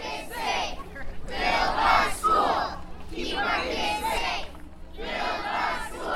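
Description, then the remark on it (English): Young voices of students and parents, nearly 100 marchers, chant together in rhythmic, repeated phrases at a protest march in front of an elementary school against a judge's ruling halting the school's construction, each loud burst of shouting separated by brief pauses, with a steady low hum underneath. “Tiny voices also ring out in front of the school, but that's for a different reason.”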